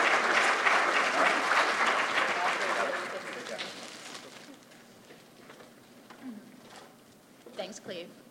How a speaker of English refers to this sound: So one more round of applause to our wonderful team and to all of our contestants